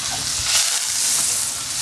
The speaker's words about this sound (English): So I got my pans nice and hot, so now I add my butter. I'm at off the heat, because I don't want my butter to burn.